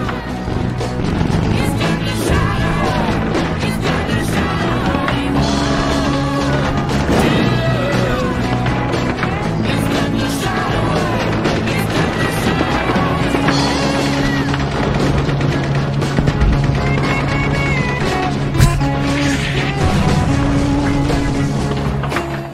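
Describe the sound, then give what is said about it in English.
A loud, dense barrage of explosion sound effects: booms, crashes and smashing impacts pile up continuously over sustained droning tones, with no talking, for about twenty seconds. “Why not have a minute of explosion noises?”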